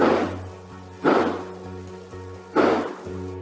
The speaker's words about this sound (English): Yeah, not only did they tell me that they've got gunshots, but they've got the audio. A home surveillance system from the neighbor captured these loud bangs around 10 p.m. that night.